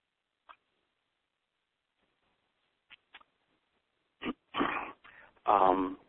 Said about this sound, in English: I am sorry for coughing so much. I just had a cold that's been lingering for a week now.